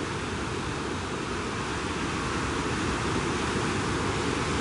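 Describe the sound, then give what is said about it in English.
A steady, continuous roar of ocean surf washing onto a beach, a dense rushing hiss with no distinct pauses between waves and no voices. “I'll leave you with this beautiful ocean sound.”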